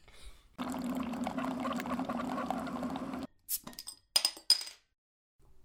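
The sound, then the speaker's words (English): Wine glugs steadily into a glass for a few seconds, then several bright glass clinks ring out as a toast, before the sound trails off into silence. “So grab a brew and come chat with us. Or today, maybe some wine. Tea. Cheers.”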